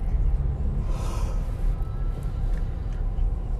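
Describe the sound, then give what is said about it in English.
A single breathy yawn swells up around the first second and fades out, with a steady low rumble running underneath and no talking. “I don't know, I yawn sometimes when I start these up.”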